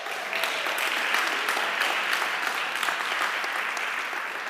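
An audience claps steadily for several seconds for all the fathers on Father's Day, a dense, even patter of many hands with bright, crackly texture and no pauses or voices.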